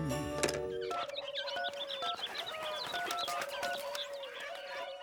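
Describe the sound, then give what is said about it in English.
A busy chorus of calling birds, received as a Christmas gift, chirps and calls nonstop, with many overlapping tweets and whistles, opening with a louder, harsher squawk. “Yes, I got the calling birds. No, I appreciate it's a unique gift, but the thing is, I now have 10 birds, and I'm not really a bird person.”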